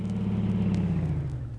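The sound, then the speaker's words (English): A car engine idles with a steady, low throbbing rumble, its pitch sagging slightly toward the end, as the car sits stopped at a traffic signal in St. Louis. No voices are heard. “Then he stopped at a traffic signal.”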